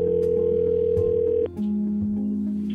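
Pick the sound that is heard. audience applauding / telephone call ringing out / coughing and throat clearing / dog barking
telephone call ringing out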